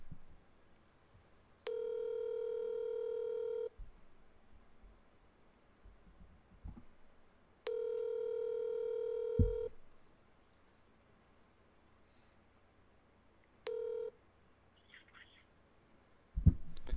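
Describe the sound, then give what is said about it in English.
Outgoing phone ringback tone heard over a speakerphone held right up to a microphone: three long steady electronic rings about six seconds apart, the last cut short, with faint background noise in between and no talking. “Is he on speaker? Yeah. Good. Put it right up to the mic.”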